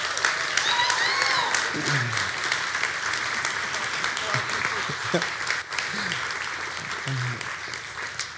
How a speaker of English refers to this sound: And so Collective, can we just encourage these parents right now by giving them a round of applause?